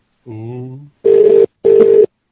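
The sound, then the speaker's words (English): A brief voice is followed by the ringing tone of an outgoing conference call to a number in England: two short, evenly spaced buzzing bursts in a double-ring pattern, loud and slightly distorted as if heard through a phone line. “Ringing.”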